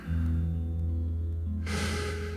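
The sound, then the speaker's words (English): A slow, deliberate deep breath, ending in a loud, airy rush of exhaled air, over a low, steady background hum. “So step one, I'll beware of my breathing.”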